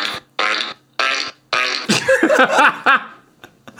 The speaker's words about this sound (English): I think you should be sorry you doubted Fart Keyboard was a thing.